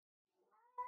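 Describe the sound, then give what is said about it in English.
A cat lets out a single drawn-out meow, rising in pitch and ending in a louder, sharper cry, with no other sounds around it. “I know, this fucking cat.”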